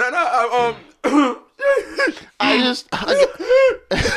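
A hard coughing fit: six or so loud, raspy, strained bursts in a row with brief gasping gaps between them, harsh and throaty with no one talking.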